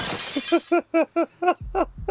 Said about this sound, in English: Which is loud enough to disrupt your hide. So glass shatters. And you break the window. The glass shatters.